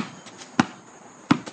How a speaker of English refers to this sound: Because it's the from the sneakers to the jersey to the bouncing of the ball twice, to him yelling N1 like he got fouled.